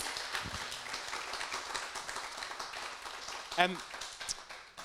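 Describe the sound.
An audience applauds a male presenter as a question session wraps up, a dense crackle of many hands clapping that holds at an even level throughout, with a brief voice rising out of it near the end.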